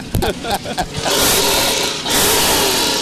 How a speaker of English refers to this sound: And so you might hear some hacking and cutting, you know, as we're hearing these engines as they are starting them up. I mean, what a moment that we were having out here at the Sweetwater Baptist Church.